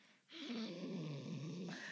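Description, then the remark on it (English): A person imitates the growl of Goose, a pet cat: a low, raspy, sustained rumble that starts abruptly and holds steady for nearly two seconds, fairly loud, with no talking. “That actually sounds like Goose's growl pretty spot okay, on.”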